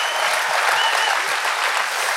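A crowd breaks into loud, sustained applause, a dense steady wash of clapping with scattered cheers and shouts mixed in, holding at an even level throughout.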